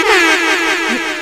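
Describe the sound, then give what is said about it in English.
A single loud, sustained air horn blast blares for just over a second, harsh and buzzing with dense harmonics, holding steady with no talking over it. “I got lost looking for the air horn.”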